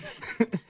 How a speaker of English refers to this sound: I do. It was a burp, it wasn't a fart!